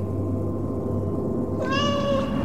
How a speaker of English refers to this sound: Suddenly, I heard meowing, and I looked and saw Mortis. Mortis. There's my cat. He's looking at me, and he's meowing, calling to me.